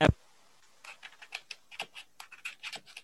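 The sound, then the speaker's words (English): Quick, irregular tapping of keys on a computer keyboard, a run of light clicks, preceded by a single sharp thump at the start, heard from a participant's side of an online call. “Well, no, I was trying to see if you were coming back because I heard tapping or typing from your side.”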